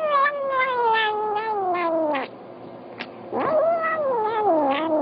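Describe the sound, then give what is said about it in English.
A male cat makes long, warbling, mumbled vocalizations while eating, like a rhythmic 'nom nom'. Two drawn-out calls with a brief pause between them, loud, with no talking. “The cat announces his nom nom noms while eating.”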